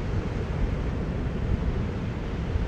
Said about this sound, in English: I am assuming that there is wind because I'm right by the ocean again. I'm assuming that you can maybe hear the waves here.